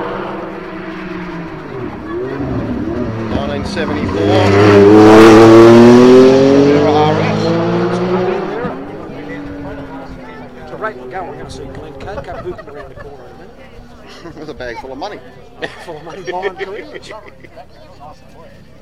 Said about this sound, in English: This car very close catch on this point. Interesting how the different sounds of the different Porsches.